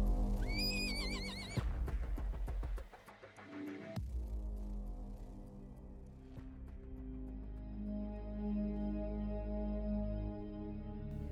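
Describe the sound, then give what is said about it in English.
A horse gives a loud, wavering neigh, then hooves thud and scrape as horses paw at the ground beside a row of deserted vehicles in sand pits, lasting a couple of seconds before a steady, low droning tone takes over. No one speaks. “And in the sand pits was a row of deserted vehicles, with their horses feeding out of nosebags or pawing at the ground.”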